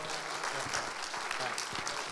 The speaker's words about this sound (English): Yeah, give it up. And why don't you keep the applause going for our next member,